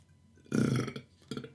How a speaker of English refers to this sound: I have to burp again.